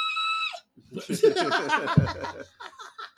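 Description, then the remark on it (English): A voice lets out a short, piercing reverse scream made while breathing in, shrill and strained, then breaks into a few seconds of breathy, chuckling vocal bursts. “That's a reverse scream when you breathe in.”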